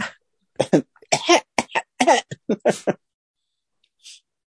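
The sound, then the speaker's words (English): A voice imitates a small child's cough: a quick, rapid series of about ten short, raspy coughs over two seconds, loud, then a brief faint sniff after a pause. “Whenever I'm at the grocery store and, like, you know, there's kids sniffling and like doing that little kid cough, you know, I step back.”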